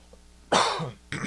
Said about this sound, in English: My throat's a little scratchy. I think maybe I sound a little bit lower. If I cough, pardon me.